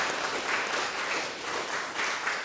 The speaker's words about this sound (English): Is that good news? Anybody want to give God a hand clap of praise for that news?